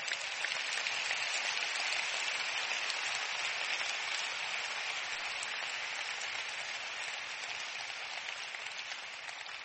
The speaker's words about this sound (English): Oh, you want to clap? Clap well.